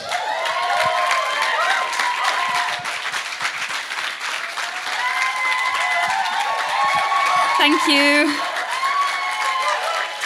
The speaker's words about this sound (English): And I know she might be a bit nervous, so you might have to give her a bit of a round of applause and support her.